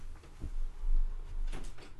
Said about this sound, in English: Hold on. I gotta close the door. I'll be right back.